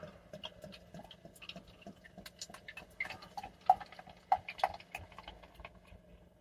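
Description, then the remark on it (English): Beer pours into a glass, a quiet run of irregular glugs, clicks and fizzy crackles over a steady low hum, with a few sharper pops toward the end; the light amber, slightly hazy beer forms a one-finger head. “That's not a bad pour there today”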